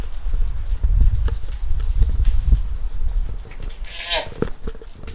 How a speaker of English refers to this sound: Yet near all of that, we're raising two goats on about 3/4 of an acre.